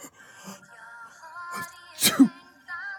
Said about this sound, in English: Oh, sorry, it's hard to say that without sneezing.